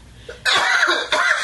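Two loud coughs, a harsh burst followed by a second about half a second later, with no talking in between.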